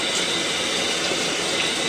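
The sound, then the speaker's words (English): A shower runs steadily, a dense, even hiss of spraying water that stays constant throughout as a man washes a woman with a washcloth, with no voices. “He gets a washcloth in under her breasts, and she stands serenely, blinking in the water.”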